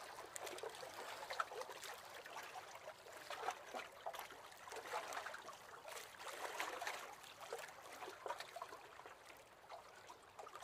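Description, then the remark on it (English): Soft, irregular sloshing and trickling of water lapping beneath a boat with a mast, moored at a small jetty in Balmaha, with gentle rising and falling swells of splashes and no voices. “Swinging from side to side with the rhythms of the water below.”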